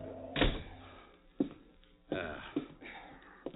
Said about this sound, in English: Kick the door shut.